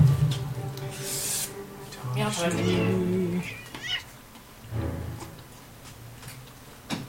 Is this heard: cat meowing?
yes